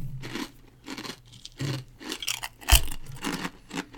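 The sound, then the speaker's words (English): Loud crunching as someone bites and chews a crisp, wrinkled ginger wasabi chip, a series of brittle cracks in an uneven rhythm with one sharp snap near the end. “That's a crunchy chip.”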